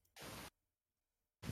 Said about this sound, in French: Il y a un peu de distorsion dans ton micro